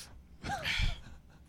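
A single quick, breathy sniff, fairly loud, lasting about half a second with no talking around it.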